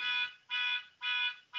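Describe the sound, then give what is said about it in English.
A car alarm, set off by someone outside, blares in steady, evenly spaced electronic pulses, each shrill tone lasting about half a second with short gaps between, with no one talking. “Somebody's setting off their car alarm out there.”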